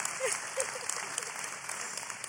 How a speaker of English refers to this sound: We can give her a round of applause, yeah.